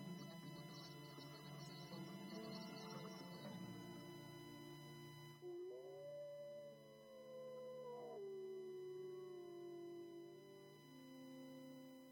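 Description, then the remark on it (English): A wild boy gives a long, wavering wolf-like howl that rises, holds and slides down over several seconds, clear, following a few seconds of dense, murmuring sound. “He ate and slept and even howled like a wolf.”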